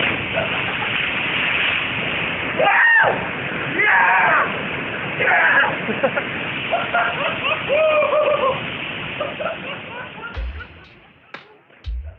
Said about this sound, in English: rappelling and jumping down some pretty incredible waterfalls into a hidden slot canyon not too far from where we live